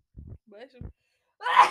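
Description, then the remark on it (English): A single sharp sneeze bursts out at the end, preceded by a couple of soft thumps and a brief breathy catch of breath. No one talks. “I'm going to sneeze.”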